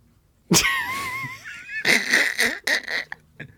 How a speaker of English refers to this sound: And it sounds like my dog's eating pussy because he's fucking drinking water during podcast time. You hear it? I hope the mic's picking up too. He doesn't even drink water, bro. This guy never drinks water.